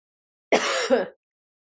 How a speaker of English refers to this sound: So if I have to cough, I got to cough. I'm not going to pay for an editor to edit out a cough. I'm sorry. You have to put up with it.